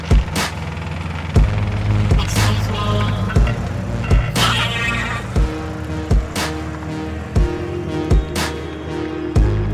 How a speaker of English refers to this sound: And listen my friends, I'm gonna try to get you back home at a reasonable hour, but traffic out here is the worst.